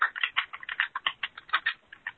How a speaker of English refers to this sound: Are you typing there? I am. I'm typing the notes out on things that you're saying. Can it too loud? Gotcha. Yeah, it's pounding in my ear. I apologize.